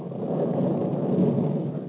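A low, continuous rumble of thunder from an approaching storm rolls on steadily without a break, loud and broad, with a hint of rain hiss mixed in and no voices.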